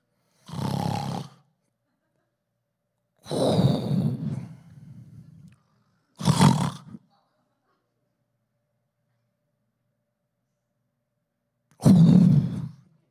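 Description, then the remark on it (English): Loud, rough snoring from a man with sleep apnea, in four harsh, rattling bursts with uneven gaps, including a long silent pause before the last snort as his breathing stops and restarts during sleep. “Because he, no joke, sounded like a dying freight train. And it sounded like this.”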